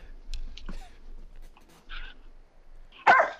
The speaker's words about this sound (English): Oh, dog's getting angry. Getting angry. Calm it down. Trying.